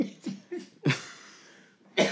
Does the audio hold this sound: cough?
yes